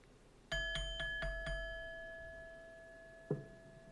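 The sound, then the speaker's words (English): A bright bell is dinged before a mantra is spoken. It rings in five quick strikes, its clear tone ringing on and slowly fading, followed by one softer strike near the end. No voices are heard. “And I'm going to ding the bell, and we're going to speak this mantra for our week ahead.”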